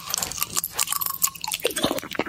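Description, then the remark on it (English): Crisp crunching and chewing of a big chunk of brittle, crunchy honeycomb toffee (not beehive honeycomb), with rapid crackling bites and moist mouth sounds continuing steadily for a couple of seconds, recorded in ASMR style with no talking. “It was someone eating a big chunk of But that honeycomb. Was like a crunchy honeycomb.”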